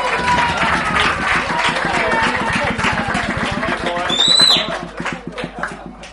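A crowd claps steadily in dense, rapid applause for several seconds to welcome a friend called up on stage, with a brief whistle rising over it before the clapping thins out and fades toward the end.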